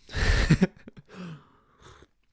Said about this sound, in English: I don't need this cup of coffee. This cup of Joe. And there goes the flow. All right, I guess I'm taking a sip.